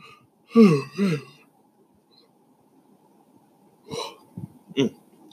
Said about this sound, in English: I'm sorry, I'm yawning so much. I must be really tired.